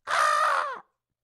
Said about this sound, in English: In between all the cars humming, try and listen to that for that bird, you know, or listen for that in between all the noise from the streets. Listen for the crow.